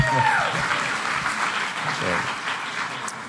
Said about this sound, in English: So if you had a good night's sleep and something other than a cot, and didn't have someone waking you up at 6 a.m., 6, 7 o'clock in the morning when you wanted to sleep, how about a round of applause for that?